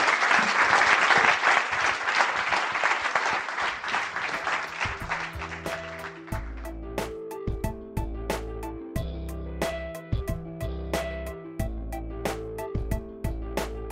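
Audience applause at the close of a Village Global discussion event, a dense wash of many hands clapping for about six seconds, thinning out as upbeat music with a steady beat and deep bass notes takes over.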